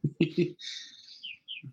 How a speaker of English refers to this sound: Is the bird chirps like coming through someone's... Oh, that's me. My window's open. That's very good ambient sound. Keep it on. It might be me too, actually. Yeah. The bird noises are actually probably exactly what you hear through the window.